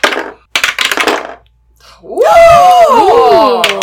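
Several quick bursts of clattering as dice tumble and knock against a hard surface, followed by a pause and then loud, swooping vocal exclamations from a group reacting.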